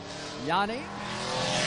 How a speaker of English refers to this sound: Up next on the racetrack, the number 16 car